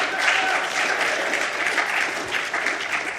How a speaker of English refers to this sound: Yes, let's clap for these guys.